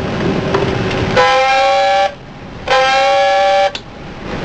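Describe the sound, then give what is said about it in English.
Two loud, blaring blasts of a submarine dive alarm, sounded as the submarine submerges, each about a second long with a buzzy, harmonic tone that bends upward at the end, separated by a short pause over a low background rumble. “Sound two blasts of the dive alarm.”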